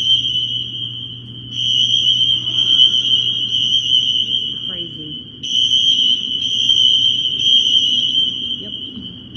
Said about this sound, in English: They set off the fire alarms. Jamal Bowman, one of the more denser version of a representative in the House, decided to set off an alarm.